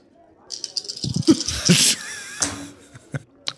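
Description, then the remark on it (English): Five dice rattle and clatter, with a burst of sharp clicks that swells into a loud tumbling roll, then scattered ticks as they settle and stop. “Okay, so I need 5 dice.”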